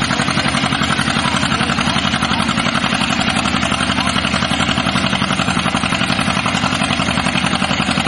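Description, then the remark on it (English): An old John Deere tractor engine, being readied for tractor pulls, chugs steadily and loudly, a rapid, even putt-putt rhythm holding constant for the whole stretch with no voices over it. “Sound of an old deer A.”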